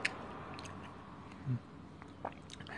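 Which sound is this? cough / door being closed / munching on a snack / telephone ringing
munching on a snack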